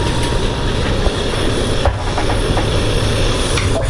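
A steady, continuous hiss of steam pressure building while the device heats up, layered over a heavy low rumble, with a few faint ticks and clicks scattered through; no voices.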